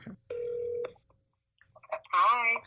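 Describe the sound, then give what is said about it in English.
A single steady electronic phone ring tone sounds for about half a second as a call is placed to a woman from a different phone, followed by silence, then a voice answers briefly over the line. “So, I'm calling her.”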